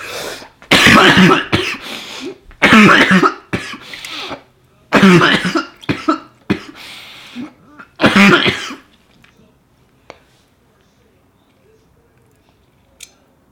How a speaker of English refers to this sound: Lost that train of thought because I really have had the cough since I took that dab really bad.